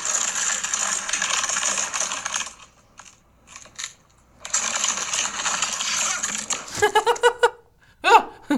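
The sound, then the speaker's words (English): A trash can full of dog waste scrapes across cement in two long, rough, grinding drags separated by a brief pause, then a few short, sharp clattering knocks and a final loud bang as a person trips backwards. “It's a trash can full of dog shit dragging across the cement and me tripping backwards and fearing that it would fall on me.”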